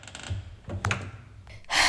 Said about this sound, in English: Zap's mom turns off the light and shuts the door.